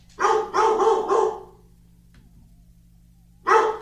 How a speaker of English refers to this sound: The dog hates us. Yeah, sorry. We're really having issues with the dog tonight.